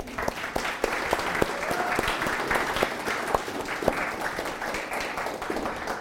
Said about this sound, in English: May we please just clap for them.